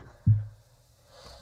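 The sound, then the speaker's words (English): A single muffled sneeze bursts out abruptly with a heavy low thump, then quickly fades, leaving quiet background with no talking. “I was literally yawning while you were sneezing.”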